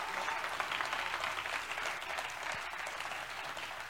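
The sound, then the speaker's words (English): An audience claps steadily for several seconds, a dense wash of many hands at an even level with no voices over it. “Y'all ain't clapping good enough for me.”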